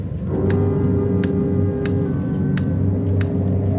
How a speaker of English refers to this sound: Loud clock, ain't it?